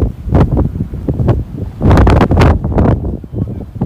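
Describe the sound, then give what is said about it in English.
Strong wind whistling and roaring in loud, uneven gusts, with a heavy buffeting surge around the middle and no voices. “It really does sound like a whistle.”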